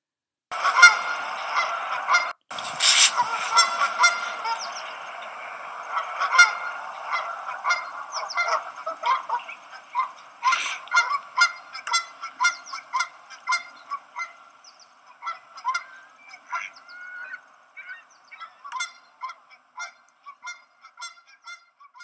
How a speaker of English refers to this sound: I'm surrounded by the sounds of wildlife as I stand on the bridge. Canada geese are honking on the west side, and ducks are quacking at the boat launch ramp on the east side. It's morning pandemonium.